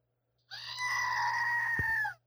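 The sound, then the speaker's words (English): A screaming goat sound effect, played in place of a lightning sound effect: one long, piercing goat scream lasting about a second and a half, loud, with a strained, almost human wail and nothing else around it. “Which is a screaming goat.”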